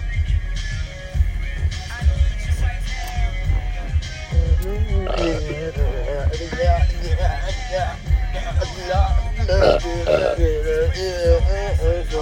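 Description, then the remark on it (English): A long, loud burp rumbles, croaking and warbling in throaty bursts over several seconds, with a steady low hum underneath. “Dude, we should have a tally of how many times I burp in an episode.”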